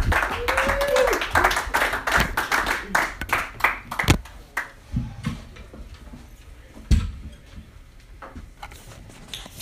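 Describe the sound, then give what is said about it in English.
A crowd applauds, loud and dense for the first few seconds with a brief cheer, then the clapping thins out to scattered individual claps that fade away. “But give it up. Big round of applause”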